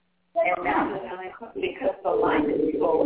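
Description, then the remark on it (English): A voice comes back over a thin, narrow-band telephone line as an echo, slightly delayed and tinny, filling the line steadily for a few seconds. “I hear an echo on the telephone.”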